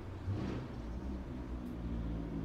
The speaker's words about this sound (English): Oh boy, another loud car, man.